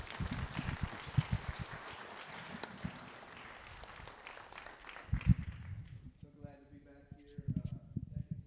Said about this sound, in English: And so, if you would, please welcome with a great round of applause,